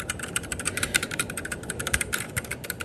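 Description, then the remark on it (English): Rapid typing on a Keychron K6 Bluetooth mechanical keyboard with light, light-beam-operated optical red switches, a steady stream of soft clicks and clacks with no voices. “Favorite keyboard is the Keychron K6. I have it in front of me here. I'll give you a little sound test.”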